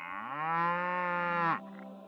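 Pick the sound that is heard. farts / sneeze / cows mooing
cows mooing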